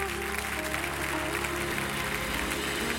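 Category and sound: crowd, audience clapping hands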